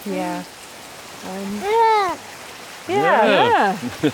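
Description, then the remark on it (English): A steady, rushing wash of flowing river water, heard from a woodland path above the river, fills the background, with bursts of voices and sing-song vocal sounds rising over it at intervals. “So we're on a path above the river.”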